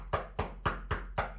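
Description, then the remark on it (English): Video game footsteps running through grass that sound more like knocking: six evenly spaced, dull thumps in a quick, steady rhythm, with a low hum underneath and no talking. “And, like, he's running in the grass and it's going...”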